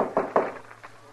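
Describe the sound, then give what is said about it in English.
Knocking on a wooden door: two firm raps in quick succession, followed by a couple of softer, fainter taps, with no voices. “Well, come on in. The door ain't locked.”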